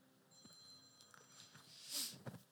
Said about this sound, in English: It's pretty apropos that there's a phone ringing right now, isn't it? That was perfect.